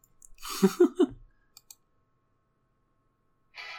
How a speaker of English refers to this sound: Oh, that's the timer. I feel like I haven't heard that in a while.